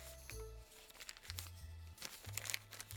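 Dry paper crinkling and crackling in short irregular bursts for a few seconds as a small scrap of paper found at the back of a door is unfolded and handled, with no one speaking.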